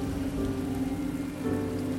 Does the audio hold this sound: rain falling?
yes